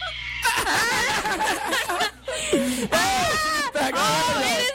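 In a video of babies fighting, a toddler girl wails and screams loudly and nearly without pause, the cries rising and falling in pitch with only brief catches of breath between them.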